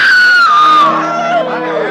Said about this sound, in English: Suddenly, a woman screams.